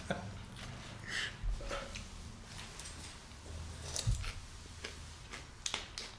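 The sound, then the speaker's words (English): Crisp, crunchy chewing of raw vegetables (cucumbers, bell peppers, carrots and lettuce), with a steady run of sharp cracking bites and softer squishy crunches at an uneven rhythm, moderately loud, with no talking. “This is a good bite. It's crunchy.”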